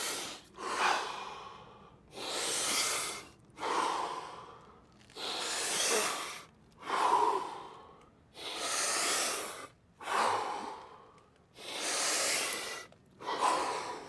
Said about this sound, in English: Let's do 5 Wim Hof breaths, and then on mic.